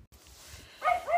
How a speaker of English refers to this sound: The dog won't stop barking.